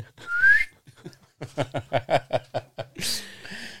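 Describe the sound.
A brief, rising high-pitched whistling squeak sounds, followed by a rapid series of chuckle-like pulses and a final breathy, hissing burst.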